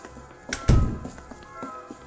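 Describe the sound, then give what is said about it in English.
A museum door, one that locks every time it is closed, thuds shut with a heavy knock, followed by a few small metallic clicks as the latch catches and locks. No one speaks. “Well, it's just right through this door that locks every time you close it.”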